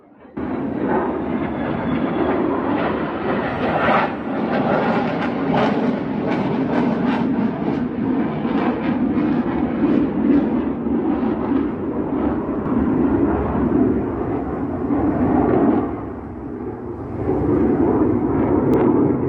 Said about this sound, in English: Oh boy, here comes the fighter jets again. This happens when you live in a military town.